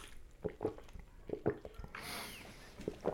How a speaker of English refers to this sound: Next, let me make sure I'm drinking my water.